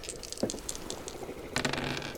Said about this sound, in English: So just roll again two dice to determine how many memories you have of being that person.